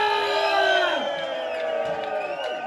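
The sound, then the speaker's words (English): An audience in Glasgow cheers and whoops loudly and continuously as a beard competition judge is introduced, many high voices holding and sliding their shouts, with scattered clapping underneath, steady for the whole few seconds. “Give me some clapping and cheering, Glasgow. Let's hear you.”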